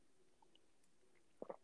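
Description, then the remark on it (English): A quick sip of a drink near the end: two short wet slurping pulses after a stretch of quiet room tone, with no talking. “Okay, taking a sip of the drink.”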